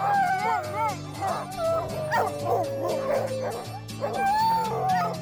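A crowd of sled dogs at a sled dog race bark and yip nonstop, high excited cries overlapping from several animals at once, loud, with a steady low tonal hum running underneath.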